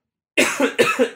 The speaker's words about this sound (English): As I cough over here.